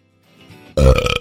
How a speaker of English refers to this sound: That was a much better burp.